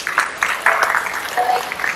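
An audience bursts into steady applause, a dense crackle of many hands clapping at once that holds at a fairly even loudness for the full two seconds, applauding a Polish scouting station's first attendance at the 1999 Jamboree in Chile.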